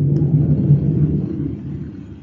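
A low, steady rumbling drone of a plane flying overhead in Virginia Beach, Virginia, under the flight path of the Oceana Naval Air Station, holding for a moment and then easing slightly softer over about two seconds, with no voices.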